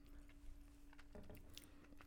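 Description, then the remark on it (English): Crunchy chewing of food: a run of crisp, crackly bites and mastication noises over a faint steady hum, with no talking. “Lots of crunch. Quite tasty.”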